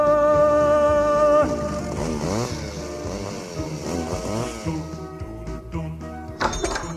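A small two-stroke chainsaw engine runs loudly alone and revs up and down repeatedly, its buzzing pitch rising and falling, then briefly sputters and rattles near the end.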